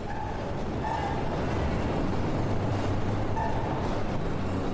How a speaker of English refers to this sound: So, just getting off the train at the Addison stop, coming down and entering the world of Wrigley Field,